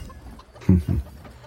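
A black raven perched on top of a set of gates squawks twice in quick succession, two short, harsh, throaty calls, standing out against an otherwise quiet background.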